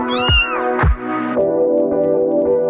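A cat meows loudly, two quick cries followed by a long, drawn-out meow that holds steady to the end, with no talking.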